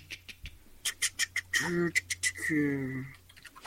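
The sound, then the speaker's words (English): Quick, irregular clicking of keys being typed during a quick check of a beer's rating, about a dozen crisp taps, followed by two brief nasal, honking tones that sound almost like a duck's quack. “Let's do a quick check while you can hear me type.”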